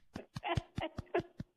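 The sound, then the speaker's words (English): One person clapping their hands about eight or nine times in a quick, steady rhythm, each clap a sharp burst, with a brief voiced sound or cheer mixed in partway through. “Hang on. Let me clap.”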